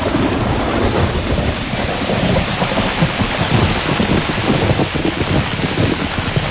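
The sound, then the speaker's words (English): Steady heavy rain pours down while deep thunder rolls and rumbles continuously underneath, loud, with some gusty wind noise and no voices, over a grassy yard with red tin-roofed buildings surrounded by forest. “When I arrive, the sun is beating down on me, but at any minute the weather can turn up here as clouds, rain, and thunder envelop this idyllic haven.”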